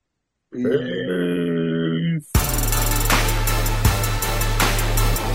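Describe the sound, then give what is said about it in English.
A long, low, gravelly burp rumbles for over a second, then music with a steady bass line and beat kicks in right after. “Ooh, I burped.”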